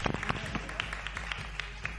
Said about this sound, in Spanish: ¡Wow! ¡Vamos! ¡Aplausos!